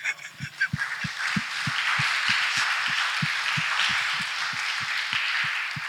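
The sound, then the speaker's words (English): A crowd applauding: a dense, steady wash of many hands clapping that holds for several seconds, with a regular low thumping pulse running underneath. No one speaks. “So I thought we'd clap for him.”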